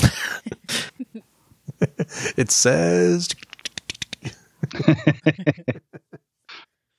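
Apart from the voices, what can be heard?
typing on a keyboard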